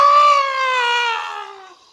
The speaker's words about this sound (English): Oh, yes, New York sirens.